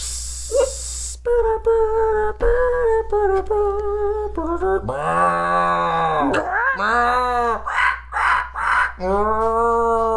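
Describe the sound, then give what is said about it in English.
Farm animal calls mix with loud, drawn-out human groans, a series of wavering, tonal cries rising and falling in pitch one after another, opening with a brief hiss. “Could you just keep it to the farm animals and not the farmers, please?”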